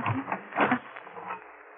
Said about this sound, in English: Now, we'll lock this door on the outside.